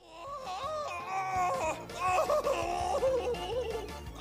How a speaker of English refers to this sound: They're not fighting, but …'s in a lot of pain. That scream! It almost sounds like someone is choking a chicken to death.